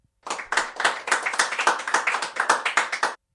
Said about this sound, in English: I did brush my teeth and wash my face, so I think I deserve some applause for that. I'll hold for applause.